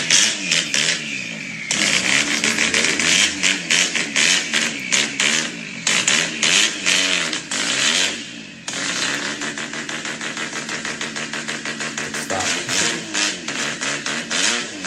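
A Mazda car engine revs loudly, its pitch climbing and dropping in repeated surges with a raspy, buzzing edge throughout. There is no talking.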